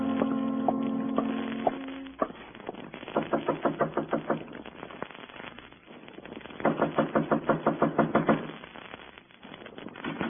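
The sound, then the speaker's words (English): Two quick bursts of rapid, evenly spaced knocking on a door in the morning, fairly loud, separated by a short pause, with a faint tonal hum before the first burst. “Not even an early knocker on my door.”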